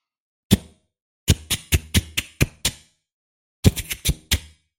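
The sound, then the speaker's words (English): Crisp clicks of a man typing on a computer keyboard, one stroke and then two quick bursts of several keystrokes separated by silence, with no one talking. “He's on his keyboard, he's communicating, he's filling something, he's doing something.”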